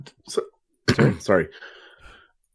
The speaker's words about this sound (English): Sorry, I had to cough.